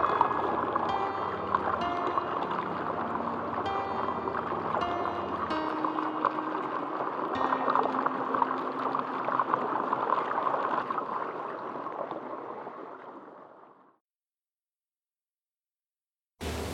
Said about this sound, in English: And then I see it. A box, slowly filling up with water